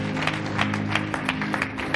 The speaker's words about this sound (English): Oh, clap your hands for God.